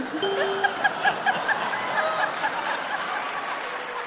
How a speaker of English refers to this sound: Don't, you don't have to applaud that, for God's sake.